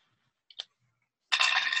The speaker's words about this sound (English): We got 1, 1, 2. So that's 4. Well, I'm so good at rolling dice.